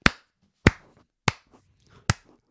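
Four sharp, bright hand claps at a slow, even pace, each with a quick decay and a brief silence between, with no voices.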